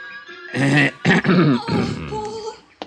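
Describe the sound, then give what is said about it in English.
A man gives a loud, throaty, exaggerated cough in three harsh voiced bursts, gruff and almost growling, the last one drawn out and trailing off. “My cough must have been pretty frightening, because the boy took off around the house like a quarter horse.”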